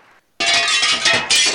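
A loud crash of a plate glass window breaking bursts in after a brief hush, a sustained bright shattering with a second surge of tinkling shards near the end.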